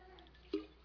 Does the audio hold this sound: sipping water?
yes